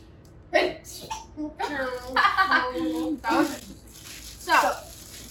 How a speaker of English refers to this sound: I'm gonna sneeze.